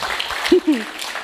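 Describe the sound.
A small audience claps steadily for the day's photographer, a dense patter of applause throughout, with a brief voiced cheer rising out of it partway through.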